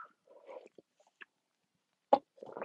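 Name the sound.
sipping a drink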